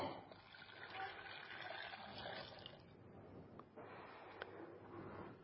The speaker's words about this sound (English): This carrot is hard. Cracks. I'm going to pop it in there. I'm going to add some hot water to it.